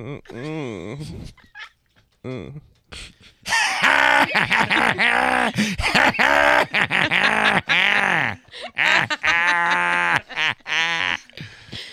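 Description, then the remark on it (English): A man lets out a string of loud, drawn-out grunts and moans imitating sex noises, rising and falling in pitch, broken by short pauses, with other voices chiming in briefly. “Do that sex noise again.”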